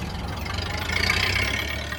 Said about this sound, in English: Okay, here we go. Manual. To start engine, turn key. Oh, listen to her purr.